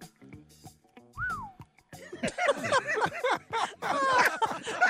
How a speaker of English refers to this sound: I like that whistle. I like the whistle.